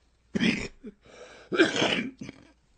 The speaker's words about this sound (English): Excuse me. I'm developing some kind of cough. It's going to be gone by tomorrow.